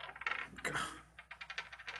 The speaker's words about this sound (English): Go ahead and roll me some charm. And I'm going to spend a hero point to double this. Because I have them. So you're rolling 8 dice at the moment.